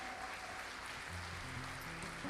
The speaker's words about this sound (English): But we appreciate our staff. Let me tell you, we have second to none. We have the best staff in the whole wide world. And so can you give them all one more hand clap of appreciation?